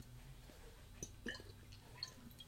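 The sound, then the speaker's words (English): Someone with the hiccups takes a quiet sip of water, with a few soft wet slurps and swallowing clicks spaced over a couple of seconds. No one speaks. “There, a sip of water, maybe things will be better.”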